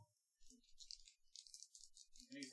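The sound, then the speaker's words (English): Dice rattle in a hand or cup as they are picked up and passed to another player, a steady clatter of small hard clicks lasting a couple of seconds, fairly clear, with a faint low rumble beneath. “I'm gonna pass the dice to”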